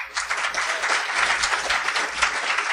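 An audience claps steadily, a dense, sustained wash of many hands with no pauses, holding at a fairly even loudness for a few seconds, in answer to a request for a show of applause from those who believe something is looming on the horizon.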